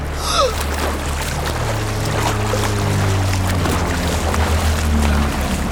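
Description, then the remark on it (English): Steady washing water noise fills the scene, like ocean waves lapping, with a low droning rumble underneath and a few brief chirping squeaks at the start. No one speaks. “Waves. I hear waves.”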